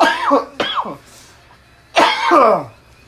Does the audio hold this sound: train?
no